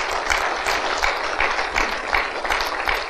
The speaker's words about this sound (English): Everyone who is licensed and ordained through RVFM, RVCC, RVFM. Yeah, amen. Give them a round, big round of applause.